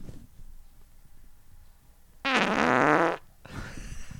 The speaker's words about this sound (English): Like I have to fart bad, and I know once it's gonna be a gut mover when it finally comes out.